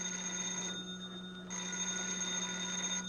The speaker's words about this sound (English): Yeah, I'll get the phone.